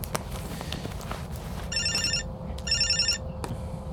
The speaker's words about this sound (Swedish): Oj, nu ringer det. Typiskt att jag ska ringa i mobilen precis nu.